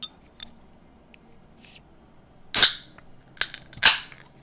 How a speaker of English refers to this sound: Mine sounded lame because I was just opening a bottle.